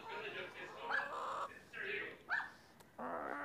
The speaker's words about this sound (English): Oh, whoa, there's real chickens.